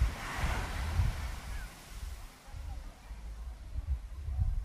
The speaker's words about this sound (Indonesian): Ya, isi podcastnya suara deburan ombak dan suara orang ngobrol dan suara hati yang lebih keras daripada suara mulut.